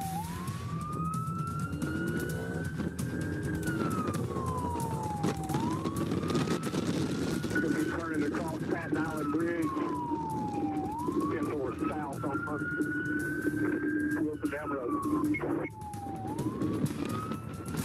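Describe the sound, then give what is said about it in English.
A police motorcycle siren wails loudly and steadily, sweeping up and down in slow cycles every few seconds over a constant roar of wind and engine noise, recorded on the officer's body camera during a high-speed chase in Alabama at over 80 miles an hour. “where a motorcycle officer running radar looking for speeders suddenly found himself in a high-speed chase.”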